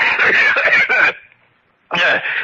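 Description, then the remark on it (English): A harsh, raspy coughing fit from a person with a cold: a long run of rough coughs, a brief silence, then another bout starting up. No speech is heard. “Excuse me, Montresor. I have a cold.”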